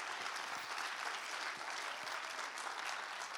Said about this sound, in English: So can we give a round of applause for all the volunteers, everybody here?